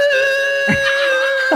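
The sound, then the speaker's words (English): A voice imitates the screeching of rusty bicycle brakes as a rider brakes at the bottom of a hill, a loud, steady, high-pitched squeal that holds for over a second, briefly roughening midway before carrying on. “And then the brakes are so rusty on these things.”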